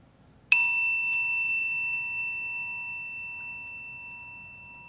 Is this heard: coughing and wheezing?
no